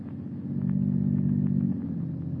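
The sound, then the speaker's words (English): A car engine purrs steadily, a low continuous rumble with a faint rhythmic pulse, holding even before easing slightly near the end, with no voices. “The unearthly silence is broken only by the purr of a motor car.”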